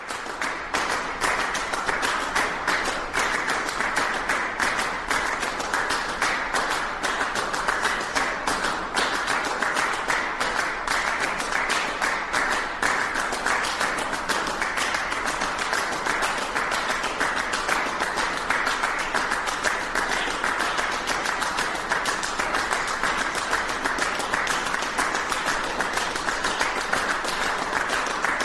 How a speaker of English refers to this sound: This is a little excerpt of Steve Reich's clapping song.